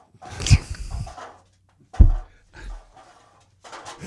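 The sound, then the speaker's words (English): A pug snorts and snuffles in a few short, gruff bursts, with scuffling movement as it scurries off. No one speaks. “Is that your dog running away from the bad joke?”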